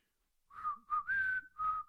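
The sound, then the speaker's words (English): A person whistles a short, off-key tune: four breathy notes with wavering pitch, sliding up and then settling, with faint breath noise and no talking. “Where do you whistle? Let me whistle.”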